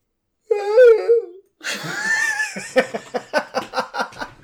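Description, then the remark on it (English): A short yawn with a falling, tonal voice, then a harsh, noisy cry that turns into a rapid run of rhythmic, pulsing breaths like panting or laughter. “It's a normal yawn in terror sound.”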